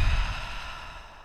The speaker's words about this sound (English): Inhale through your nose. Exhale through your mouth.